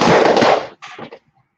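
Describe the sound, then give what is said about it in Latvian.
A vape mod is dropped from about a metre high straight onto the floor, hitting with one loud, sharp clattering crash, then a shorter, quieter rattle as it bounces and settles, followed by silence. “metot zemē, nekādas vainas nav, nu, pamēģināsim, vietu nometīsim, pagadī, pabraukšu tā tālāk, nu, augstums tiek kaut kāds metrs apmēram, šitādā veidā taisni, jā, vienkārši uz grīdas.”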